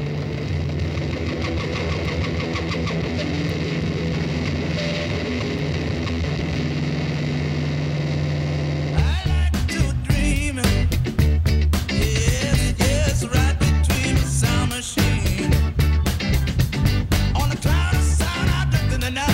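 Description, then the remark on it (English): A song played on radio station KFI AM 640 opens with a steady, buzzing wall of distorted drone humming for about nine seconds before a loud, dense band crashes in with driving rhythm, with no voices over it. “Not enough songs start with 20 seconds of distortion anymore.”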